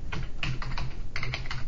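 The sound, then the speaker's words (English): Rapid typing on a PC keyboard, a quick burst of clustered key clicks in an irregular rhythm, moderately loud, with no voices. “Just tell you his password as I quickly see his fingers skirt over the keys.”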